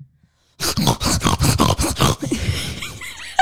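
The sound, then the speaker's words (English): A person imitates a bulldog-like stertor cough: a rapid series of about eight harsh, snorting, rattling bursts, loud and rhythmic, trailing off into softer wheezy grunts. “It's the Stromer. Stertor cough.”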